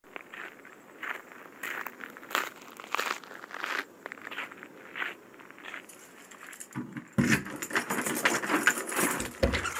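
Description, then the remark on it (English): Keys jangle and clink in a series of short, irregular bursts alongside footstep-like shuffling, growing louder and busier toward the end, with no one speaking. “Jangling keys.”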